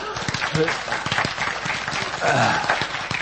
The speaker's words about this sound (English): She turned 60 Thursday. Yeah, we can clap for her.